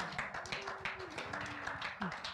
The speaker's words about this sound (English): And so, ladies and gentlemen, let's give a big hand of applause to all the moms to show our appreciation.